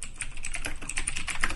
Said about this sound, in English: Our dual typing action.